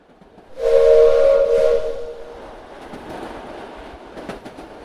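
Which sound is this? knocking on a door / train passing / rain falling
train passing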